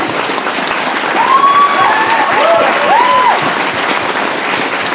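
A crowd applauds with steady, dense clapping that stays loud for the whole stretch, with a few whoops and a rising whistle rising above the clapping.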